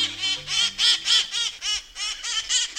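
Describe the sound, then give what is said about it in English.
A rowdy flock of wild cherry-headed conures (parrots) in San Francisco screeches in harsh, raspy squawks. About nine loud calls come in quick succession, overlapping and carrying clearly, with no voices. “Troublemakers, clowns, these rowdy crowds of parrots in San Francisco are splashed with maraschino red and pickle green, as bright and cheery as the iconic painted ladies' houses lining Alamo Square.”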